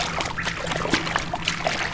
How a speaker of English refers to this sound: Remember, this is the flooded crypt of the Church of San Zechariah. There's always water in here, although on a rainy night like tonight, the water is much deeper than usual.